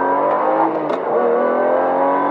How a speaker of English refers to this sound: That's me and my Lambo. Power in our commando. Bright green Lambo.